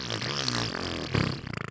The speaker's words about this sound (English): And it had different variations of fart noises. And Gas Out. Yeah, it was called Gas Out.